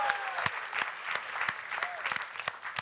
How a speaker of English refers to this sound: Yeah, let's give her a round of applause, man. Come on.